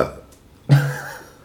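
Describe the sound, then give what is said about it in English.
A single loud burp erupts abruptly after a brief near-silence, a low, throaty rumble lasting about half a second before trailing off. “I burped in amazement.”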